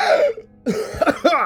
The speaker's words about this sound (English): I think there should be a gasp there. A big gasp. A bigger gasp.